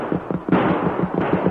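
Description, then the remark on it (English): Two loud, sharp gunshots crack out about a second apart, fired by men from a cafe at a rider fleeing on a white stallion, each leaving a noisy rush behind it, over a steady rhythmic low thumping and continuous rumble. No one speaks. “Guns barked and bullets zoomed past the rider's head.”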